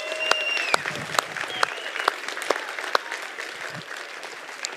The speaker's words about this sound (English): So we have a lot of people. I can't go through everybody's name, but let's give them a round of applause. Let's go.